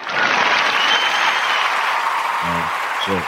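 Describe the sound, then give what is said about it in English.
A played applause sound effect: steady, dense applause from a crowd fills the whole stretch, a broad hiss of many clapping hands at even loudness, with a couple of brief low voice bursts near the end. “Throw out that applause sound drop.”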